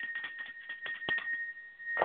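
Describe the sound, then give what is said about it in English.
A bell rings with a steady, high sustained tone that holds for the full two seconds, with faint tapping clicks scattered underneath and no talking. “Going to ring the bell real quick.”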